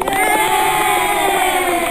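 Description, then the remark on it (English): A crowd cheers and claps in a loud, dense wash of voices and applause that holds steady for a couple of seconds without a break, applauding local organizations for their work. “I can clap for that.”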